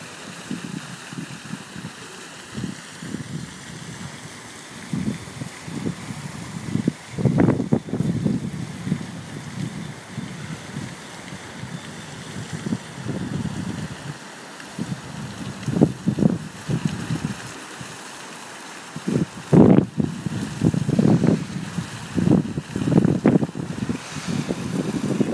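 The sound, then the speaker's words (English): A small water fountain splashes steadily on a very windy day, with irregular bursts of rushing water and low gusty rumbles of wind buffeting the mic throughout. “I wonder what this sounds like on the audio. This like little water fountain.”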